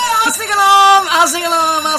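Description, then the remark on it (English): A wavering, rising-and-falling alarm-like wail, probably a voice imitating an alarm, sustained loudly for about two seconds with two noticeable pitch dips. “Arsenic alarm!”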